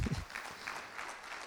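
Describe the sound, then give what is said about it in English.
An audience clapping, a steady, even patter of many hands with no voices over it, fairly soft throughout the brief moment. “You can clap.”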